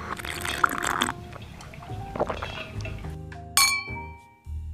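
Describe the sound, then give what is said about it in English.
Clinks and knocks of a huge water bottle being handled as someone drinks water from it, with wet sloshing and swallowing-like liquid sounds in between, fairly loud, with no talking. “I think a huge thing that I can attest my skin to as well is drinking a shit ton of water.”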